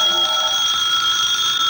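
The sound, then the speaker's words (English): A telephone bell rings without pause, a steady, bright metallic jangle with a high, shimmering tone that holds an even loudness throughout, with no voices. “Pick it up, Evans. Hello? No answer.”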